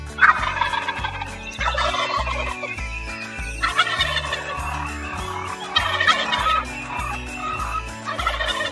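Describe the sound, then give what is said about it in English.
A turkey gobbles loudly in several rattling bursts, each a few seconds apart, over a steady low rhythmic backing. “Turkey.”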